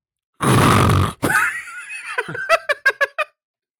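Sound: person imitating snoring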